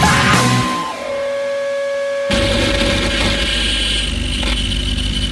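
A motorcycle engine runs, a steady tonal whine at first, then a rougher, louder rumble kicks in halfway through and keeps going with no one talking.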